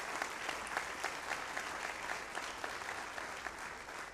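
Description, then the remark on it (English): Sustained applause from a church crowd for the volunteers who did painting, demolition and cleanup projects, a dense steady patter of many hands clapping at a fairly even level for several seconds, with no voices standing out. “And can we give all of those people a big round of applause?”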